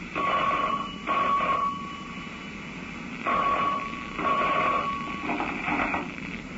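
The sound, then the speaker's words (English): A telephone rings in two double bursts, each a pair of steady electronic trills separated by a short pause, fairly loud, with no voices. “He was a man in love, and young enough to be in love with love, young enough to forget everything else in life, till a phone call brought him out of the rose-colored clouds and back to reality.”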